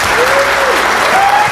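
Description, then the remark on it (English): A crowd applauds the panel on the .NET Rocks show with steady, dense clapping that stays loud and even throughout, a continuous wash of many hands with a faint whistle-like tone gliding through it. “Big hand of round of applause for our panel.”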